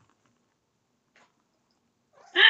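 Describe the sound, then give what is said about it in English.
A single short cat meow bursts in loud at the very end, following a few seconds of near silence with only a faint rustle. “My cat is down here saying hi to everybody.”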